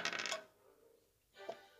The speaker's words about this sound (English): So, let me throw the dice once again.